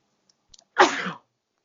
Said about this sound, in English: I did just sneeze.